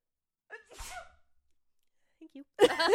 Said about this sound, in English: I'm going to sneeze. Bless you!